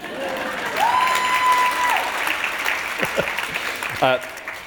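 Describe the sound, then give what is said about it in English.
An audience applauds steadily throughout, a dense wash of clapping with a brief whistle early on and a few voices calling out near the end. “You can applaud if you like.”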